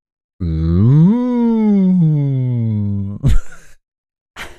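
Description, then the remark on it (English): A person gives one long, drawn-out imitation of a cow's moo, lasting about three seconds, its pitch rising then slowly sinking, followed by a short breathy exhale and a brief breath. “Are you mooing or giving me the letter M?”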